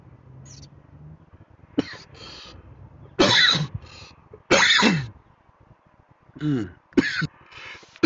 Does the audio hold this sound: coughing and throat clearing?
yes